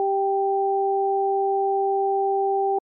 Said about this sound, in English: I switched the headphones around, and it made no difference to what I perceived. The high tones remained in my right ear and the low tones remained in my left ear. If you have headphones on, flip them around. There's probably no difference.